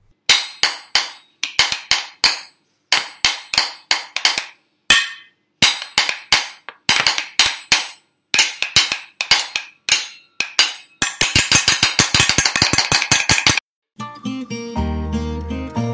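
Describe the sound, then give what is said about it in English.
Kitchen implements are struck by a family in bright, clinking rhythmic phrases, tapping out Jingle Bells as a Christmas rendition, building into a rapid, dense clatter before a short stretch of sustained, tonal music takes over at the end. “Special thanks to my family for their wonderful kitchen implement rendition of Jingle Bells.”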